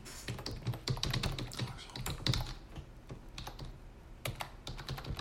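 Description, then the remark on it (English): Rapid clicking of computer keyboard keys, a steady stream of irregular taps with brief pauses, moderately loud, with no voices. “I'm just typing this in.”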